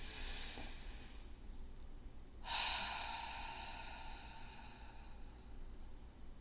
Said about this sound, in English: So why don't we close the same way we opened? I love to seal the sacred space the same way we opened it. And I do that in my breathwork sessions by just taking a breath together, breathing in.